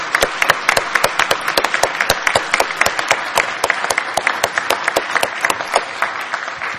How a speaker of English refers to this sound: And I would like right now for all of us to applaud those who serve in our church in roles of leadership for the Lord. Thank you very much for everything you do.